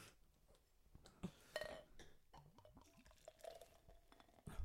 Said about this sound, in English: just poured literally a half a pint of just foam.